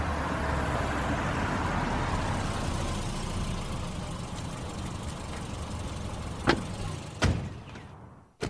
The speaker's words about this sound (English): There's just enough room to pull the car over right before the sign.